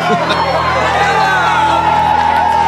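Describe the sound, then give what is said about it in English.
A dense crowd roars and cheers at a fight night, a steady wash of voices and shouts with occasional higher whoops, loud and sustained throughout. “It's fight night. My fight night, and the place is electric.”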